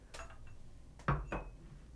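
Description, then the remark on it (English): Fernet being poured into copitas: a few light glassy clinks and knocks, then a brief splashy burst of pouring, all fairly quiet with no talking. “Let me pour some Fernet.”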